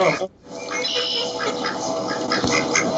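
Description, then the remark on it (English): A couple of ducks quack repeatedly, their nasal calls overlapping in a busy, continuous stretch with only a brief pause near the start. “There's a couple ducks.”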